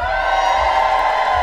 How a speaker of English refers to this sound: But you need to practice. I want to hear you cheerfully yell on the count of three. You ready? One, two, three.